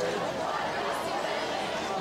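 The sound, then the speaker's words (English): A large stadium crowd at a Cardinals football game at night keeps up a steady, dense wash of voices and cheering for the Cardinals, loud and continuous for the whole stretch without distinct peaks. “We still got a pretty decent crowd here underneath us cheering on the Cardinals, wishing that they would have gotten a better result at the end of the night.”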